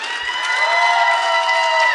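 A crowd claps and cheers steadily for about two seconds, a dense, even wash of applause with whooping voices mixed in, holding at the same loud level throughout.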